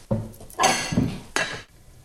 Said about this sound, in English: Now that just needs to go on the hob. Probably going to start it off on a medium to high heat and cover it with a lid and just let that come to the boil.